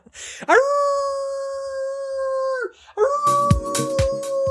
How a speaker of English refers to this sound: Because you're getting eaten by wolves.